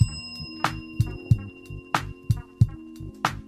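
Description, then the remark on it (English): A bell, rung as a shout-out to truck drivers listening to the Jeff is Moody Show, rings in a steady rhythm, struck about seven times with sharp clanging hits while bright metallic overtones hum continuously underneath. No one speaks. “Y'all heard my bell?”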